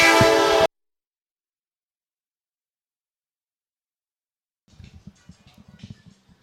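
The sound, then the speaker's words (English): A passing train's loud, blaring horn sounds at K Street Seafood Station in Hammond for under a second and cuts off abruptly, followed by several seconds of silence before quiet voices begin talking. “The train was bearing down on us, but it got on through here at K Street Seafood Station.”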